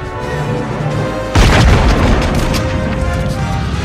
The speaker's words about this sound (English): as we've learned, machine guns don't make a lot of noise, but pistols are freaking hand cannons.